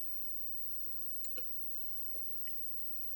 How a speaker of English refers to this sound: I had to drink a little water.